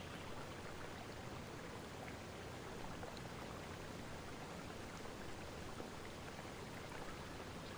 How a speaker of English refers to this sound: Watching the ocean. The waves crashing in.